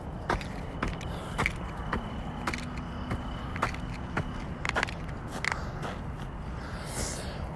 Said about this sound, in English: I'm stomping my feet and stuff to chase away coyotes.